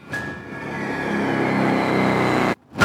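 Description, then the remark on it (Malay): A motorcycle engine revs loudly, a steady throaty roar holding for a couple of seconds before cutting off abruptly, then briefly resuming, as the rider parks it beneath an apartment block in a housing estate. “Oleh itu, dia bawa motosikal dia dan parking dekat tengah-tengah di bawah bloknya.”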